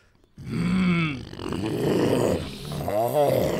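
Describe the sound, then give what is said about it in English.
A person imitates a low, rumbling growl with their voice, a gravelly, throaty sustained rasp that rises and falls over a few seconds, fairly loud with no speech. “I'm not even using my voice when I do that. I'm using all this up here to make that low growl.”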